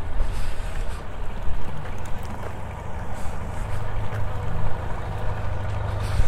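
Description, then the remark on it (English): A steady, loud low rumble of boat engines drones throughout, with water churning and splashing over it, on a very busy part of a river full of passing boats. “We're getting to a very busy part of the river as well.”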